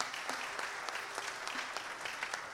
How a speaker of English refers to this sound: If you all just give him a clap, just say welcome.